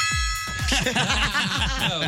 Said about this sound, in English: I think it's a ding, not a gong. This sounds dingish.